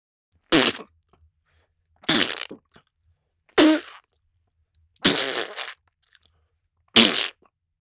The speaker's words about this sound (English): Splat variations.